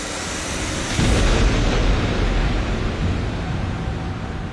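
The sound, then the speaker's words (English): A sharp thunderclap from a lightning strike out of dark clouds hits at about one second, then a deep, loud rumble rolls on and slowly fades, with a broad wash of noise underneath and no voices. “Lightning strikes from dark clouds, ready to be unleashed on Earth.”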